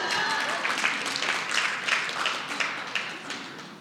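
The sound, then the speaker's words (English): An audience applauds steadily, a dense wash of many hands clapping at an even, moderately loud level for about four seconds, with no voices standing out. “It wasn't something, I know, you can't applaud that, right?”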